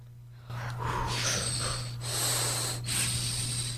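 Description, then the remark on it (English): Breathy, hissing rasps of air blown through a pen cap, a Darth Vader-like wheeze rising and falling in three or four long strokes over a steady low hum, with no talking. “Let's see if it does this with this pen cap. No. Just sounds like Darth Vader.”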